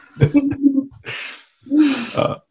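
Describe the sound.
A sleeping pet snores: two long, breathy, rasping snores with a short gap between them, after a brief throaty, voiced grunt at the start.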